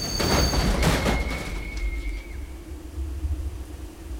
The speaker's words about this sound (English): As Dr. Thompson and Nina crossed the railroad tracks on Inman Street, a train crashed headfirst into his buggy.